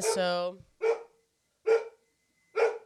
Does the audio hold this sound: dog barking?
yes